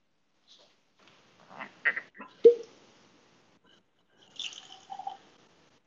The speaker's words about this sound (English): That sounded like booze. Yeah, your blue label convinced me to pour a little maker.